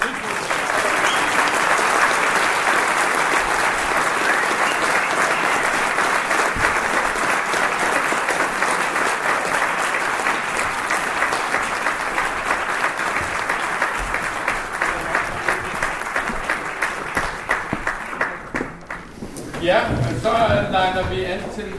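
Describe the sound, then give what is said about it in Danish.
Sustained audience applause at an awards event for traditional music, welcoming the new players, a dense, steady wash of many hands clapping for about eighteen seconds before thinning out, followed by a brief moment of voices as it fades. “Og nu, mine damer og herrer, klapper vi jer de nye.”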